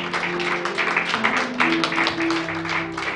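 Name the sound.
audience hand clapping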